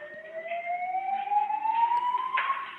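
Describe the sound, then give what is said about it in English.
A smoke detector alarm sounds continuously, one steady, piercing electronic tone whose pitch creeps slowly upward across the whole stretch, loud and unbroken with no voices over it. “Wait, now the fire alarm goes off, but not when 1,000 rounds were getting shot off in the room?”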